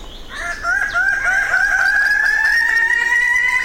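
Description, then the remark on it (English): Loud, raucous crowing calls of male Raggiana birds-of-paradise in a lowland forest on the island of New Guinea in the early morning, strident, drawn-out cries overlapping into a continuous chorus after a brief softer start, with no one speaking. “The lowland forest erupts with the crowing calls of male Ragiana birds of paradise.”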